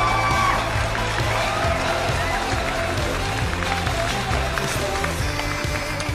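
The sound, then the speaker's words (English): A crowd of wedding guests applauds and cheers for the bridesmaids and groomsmen in a steady, loud wash of clapping with scattered whoops, over a rhythmic low thumping beat throughout. “Big round of applause. Let's give it up.”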